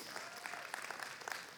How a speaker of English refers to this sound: That's worthy of a clap. Go on, come on, don't be shy.